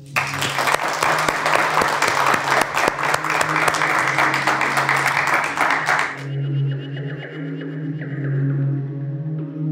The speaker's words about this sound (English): Could I thank you, Minister? And please, if you would join me in a round of applause.